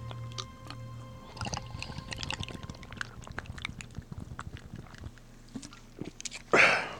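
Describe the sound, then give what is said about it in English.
Someone sips a 10.7 beer from a 32-ounce crowler: a run of small wet slurps, clicks and handling taps over a low steady hum, ending in a short, louder breathy gasp after the swallow. “So I'm gonna take a quick fucking sip of this shit real quick.”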